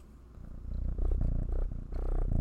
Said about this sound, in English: Can you guys hear my cat purring, by the way?